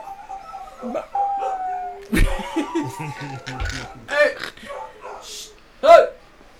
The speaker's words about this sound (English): Dogs. That shit sounds dope. I know it sounds like some motherfucker werewolves in my ear, nigga. That sounds gangster.